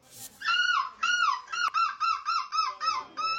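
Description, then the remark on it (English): A man's voice, a seagull screeching champion in Belgium, imitates a screeching seagull: a loud series of about nine harsh, nasal cries, starting with one long squawk and then repeating in quick, even bursts. “Yeah, he won Crown's new seagull screeching champion in Belgium.”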